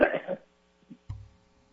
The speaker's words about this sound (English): is just coughing.